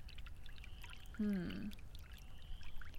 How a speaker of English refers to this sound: So, gotta hook up the hose to the sprinkler. All right, turning the water on. Doesn't really seem to be any water pressure.